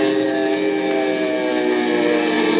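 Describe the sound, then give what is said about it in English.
An Army bomber's engine roars loud as the plane dives from about 2,000 feet onto an enemy tripod machine, its engines giving out: a dense, steady droning whine with a constant pitch that holds unbroken for a few seconds with no voices. “We're diving on the first one.”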